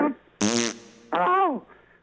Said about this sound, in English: Oh. Oh, my God, did she just fart?